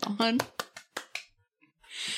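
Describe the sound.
A handful of scattered claps, loose and uneven, mixed with brief voices, followed by a short burst of hissy, steady noise near the end.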